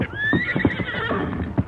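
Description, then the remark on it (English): A horse on a trail lets out a loud, drawn-out whinny while its hooves clop steadily underneath in a quick, uneven rhythm. No one speaks. “Oh, Silver! Wait, boy.”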